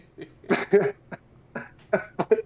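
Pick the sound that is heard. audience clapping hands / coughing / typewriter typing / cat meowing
coughing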